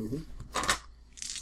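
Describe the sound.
Dice clatter briefly across a hard surface, a sharp rattling burst followed by a lighter skitter as they settle, after a brief murmur of voice.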